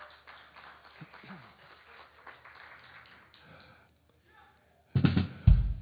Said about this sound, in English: How many here served for CFK this week? Yeah, give yourselves a big round of applause.